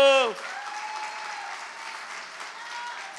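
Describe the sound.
An audience breaks into steady, sustained applause lasting a few seconds, a dense wash of clapping that holds at an even level after a brief trailing voice at the very start.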